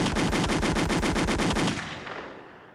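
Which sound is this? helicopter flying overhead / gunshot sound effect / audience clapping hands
gunshot sound effect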